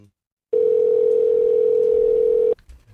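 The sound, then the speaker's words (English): A phone line's outgoing ringing tone: one steady, even electronic tone lasting about two seconds, loud, with no talking over it and quiet on either side. “What fucking rings this guy got?”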